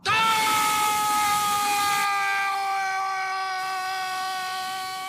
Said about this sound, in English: Where he gets his probe jammed up his nose, which lights up his entire, well, sinus cavities, I suppose. Yeah. Skull, it looks like. And he screams and screams and screams.